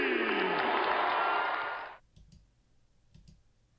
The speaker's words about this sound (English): Ladies and gentlemen, let's hear it for you. Got a good ovation.